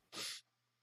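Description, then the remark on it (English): A single sharp sneeze bursts out, a quick explosive hiss lasting under half a second, followed by quiet. “Achoo.”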